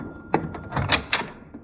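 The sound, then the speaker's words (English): Several knocks on a front door, a few sharp raps spaced unevenly with softer thumps between, moderately loud, with no voices. “I'll see who's at the door.”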